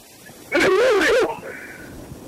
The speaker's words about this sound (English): Are you coughing? Yep. You have the virus? Yep.